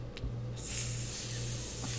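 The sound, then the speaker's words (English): A person imitates a basilisk's hiss with one long, steady, airy exhale lasting over a second, sharp and breathy, over a faint low hum. “She hisses.”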